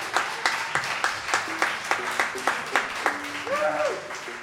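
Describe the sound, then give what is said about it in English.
A small audience at a community radio show claps in loose, uneven rhythm, answering a call for a clap from key enthusiasts; the sharp hand claps arrive steadily for several seconds with a faint voice murmuring underneath near the end. “Everybody claps in their own key.”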